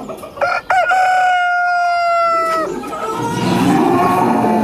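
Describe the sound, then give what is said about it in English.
A rooster crows loudly, one long cock-a-doodle-doo with a rising start and a sustained, strained held note, followed by a noisy farmyard bustle of clucking fowl, played as the intro to a radio segment of country news. “Had to get a few cows in there and a few roosters, a few birds.”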